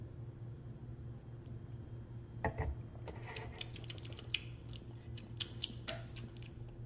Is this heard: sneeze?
no